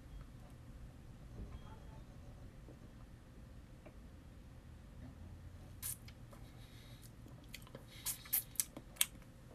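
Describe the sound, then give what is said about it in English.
Someone sips and tastes a roughly poured beer with a thick five-finger head from a glass: a quiet stretch over low background hum, then a cluster of soft sipping and glass-contact clicks near the end. “But, okay, just excuse me for a second while I test this one out.”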